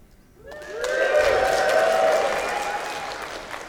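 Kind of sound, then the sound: crowd, audience cheering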